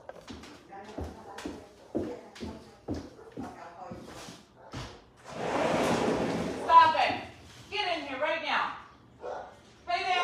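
Dogs bark in a quick, steady run of sharp barks, then a burst of rough noise and a stretch of higher, wavering yelps and whines.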